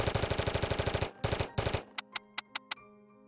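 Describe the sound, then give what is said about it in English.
Rapid automatic gunfire from a man shooting into a restaurant's interior after kicking in the front door rattles in a fast, steady burst of about a dozen loud shots, then breaks into a few short bursts and five sharp, spaced single shots before falling quiet. “A man got out and kicked in the front door of the restaurant, opening fire on the interior.”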